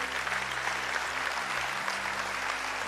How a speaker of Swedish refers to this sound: Ge dem en applåd. Tack så jättemycket, tjejer. Tack.